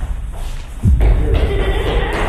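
Heavy footfalls thump as someone runs up a staircase in a house, a loud dull impact followed by a low rumbling clatter over a steady background hiss.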